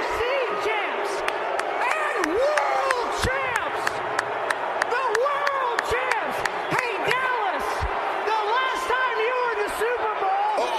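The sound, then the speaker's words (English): A loud arena crowd boos a Philadelphia Eagles kicker speaking before them, in a sustained, overlapping roar of many voices, with sharp claps and bangs scattered throughout the nearly eleven seconds. “It had a good wrestling-like pop to it with everyone booing really loud.”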